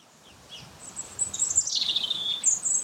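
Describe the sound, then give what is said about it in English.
Wind rustles steadily through the oak leaves of the son of the Royal Oak at Boscobel House, a soft, continuous, fluttering hiss that swells and ebbs, while high, thin bird chirps and a brief trilling song ring out over it. “You can probably hear the sound of the wind in the trees, oak leaves rustling on an ancient branch.”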